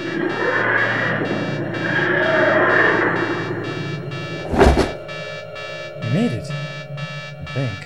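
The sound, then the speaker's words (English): An electronic emergency alarm warbles in repeated rising-and-falling tones over a dense mechanical hum, following a sudden loud burst midway through. “That's the emergency alarm!”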